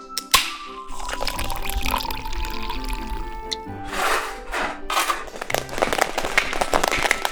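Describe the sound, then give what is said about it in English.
Schweppes ginger ale is poured into a glass for a cocktail in a few surges, with sputtering splashes and a crackling carbonated hiss that rises and fades between pours. “And then the Schweppes ginger ale.”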